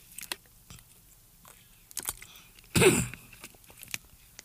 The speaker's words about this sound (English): Sorry, it was a sip. I was taking a sip of water, so pardon me for that.